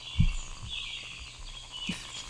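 Soft, continuous bird chirping and twittering at a high pitch, with a couple of dull low thumps underneath and no one talking.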